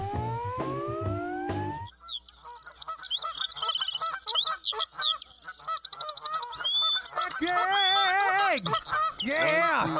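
A flock of geese honks loudly and continuously, many overlapping calls crowding together, after a brief rising electronic tone at the start.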